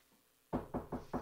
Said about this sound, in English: The metal door clangs and echoes as you knock on it, even quietly. There's no response.